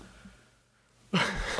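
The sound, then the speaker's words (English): A loud, breathy yawn bursts in after about a second of near silence, a voiced, drawn-out exhale that is still going when the sound cuts off. “You don't mean to yawn. I was just a little tired.”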